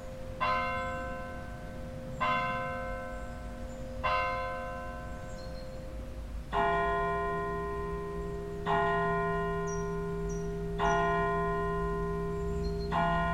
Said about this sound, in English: the sound of the bells that measure the passing time in regular intervals. It also itself circulates, repeatedly ringing every hour to indicate the specific full hour.